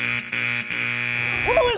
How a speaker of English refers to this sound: Let's take calls! Who is buzzing me?